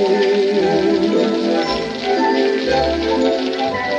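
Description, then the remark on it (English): Steady rain patters across a hard surface, a dense continuous hiss, while a melodic voice or music with a wavering tone carries over it as someone dances and sings in the rain. “Dancing and singing in the rain.”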